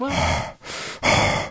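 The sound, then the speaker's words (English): A voice imitates the angry, heavy breathing heard in phone calls: loud, rasping breaths pushed in and out in a quick, forceful rhythm, with no words spoken. “My favorite thing about those calls is the heavy breathing.”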